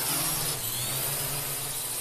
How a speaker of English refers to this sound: The women ran behind the baobab tree and hid from the drone that was following them all along. The drone landed close to the tree where the women hid.